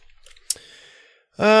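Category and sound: household object, computer mouse clicking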